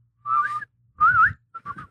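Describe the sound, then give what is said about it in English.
Breathy whistling drawn in on an inhale, made while sucking in air, three short wavering phrases with a slight gliding pitch and audible airy rasp beneath, separated by brief pauses. “Can you do it with, like, sucking in air?”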